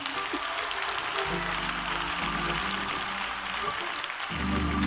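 audience clapping hands

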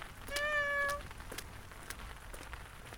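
kitten meowing

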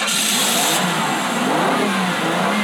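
car engine accelerating

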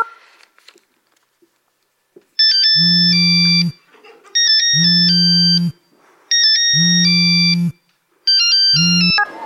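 phone ringing

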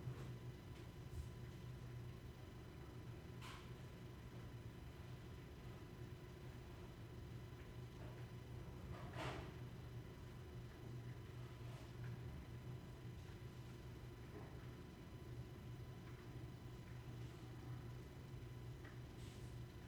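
rain falling outside

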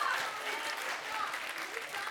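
audience applause

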